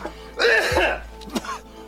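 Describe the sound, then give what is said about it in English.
A single harsh cough with a raspy throat-clearing quality, fairly loud, followed by a brief softer rasp and breathy noise trailing off. “what could I do for this cough?”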